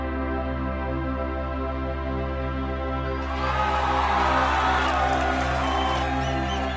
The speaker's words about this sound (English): Cheering.